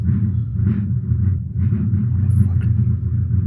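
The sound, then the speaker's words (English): A car engine rumbles loudly and steadily outside, a deep continuous low-pitched drone that holds for the full few seconds without a break. “That's a car? Yeah.”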